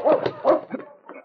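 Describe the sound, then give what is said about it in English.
Several dogs bark and yip in quick, overlapping bursts, sounding somewhat distant, heard from Sheep Camp at the foot of the mountains, south toward Skagway, with a brief whimpering tone fading at the end. “In the distance, south toward Skagway, he could hear dogs.”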